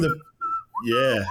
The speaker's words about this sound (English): From the very beginning when they're whistling and I think the music's great in this movie.